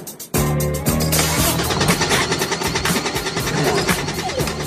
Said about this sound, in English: I think you flooded it. Get out of the car, sir.